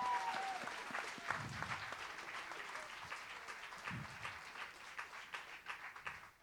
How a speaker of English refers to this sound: Give them Academy Award winning women a big round of applause.